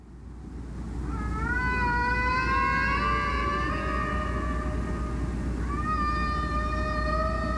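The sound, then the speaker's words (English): Long, drawn-out whale song recorded by the Ocean Alliance research vessel Odyssey, over a steady rumble of underwater noise: a rising, wavering moan that holds for several seconds, then a second upswept cry begins, both rich and resonant. “The Odyssey also collects recordings of whales singing,”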